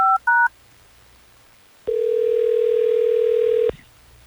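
Two quick touch-tone beeps of a phone being dialed by hosts of Hot 101.5 radio in Tampa Bay to call a listener's contact, followed after a short pause by a single loud, steady ring tone lasting nearly two seconds; no one speaks.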